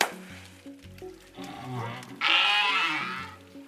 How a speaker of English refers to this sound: others you might find surprising, like the groans, pops and creaks that are part of the southern right whale's repertoire.